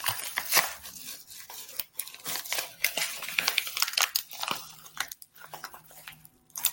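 Loud, crisp crinkling and rustling of Christmas present wrapping being torn open, in irregular bursts of crackly noise with brief pauses over several seconds, no voices.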